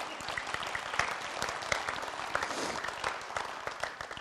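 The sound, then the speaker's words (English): An audience applauds God steadily, a dense patter of many hands clapping with small sharper peaks throughout, sustained at even loudness with no voices standing out. “You give him a clap then, I think he is.”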